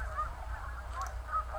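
A flying flock of white snow geese with black wingtips honk a few times in quick, uneven calls, fairly quiet, over a steady low rumble with no voices.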